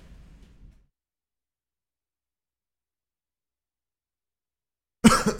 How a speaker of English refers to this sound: Sorry, guys. Had to mute myself because I was about to cough.